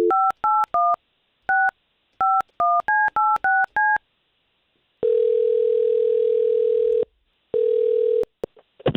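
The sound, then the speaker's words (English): A phone number being dialed on a telephone keypad to call a woman: a rapid series of short keypad tones, about a dozen beeps in quick bursts, followed by a steady dial-style ringing tone that sounds twice. No voices are heard. “We're going to try to call her first.”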